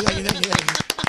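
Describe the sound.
A few people clapping for Elvis Duran in quick, uneven bursts, the sharp claps fairly loud and steady across the short clip, with a voice speaking over the first half.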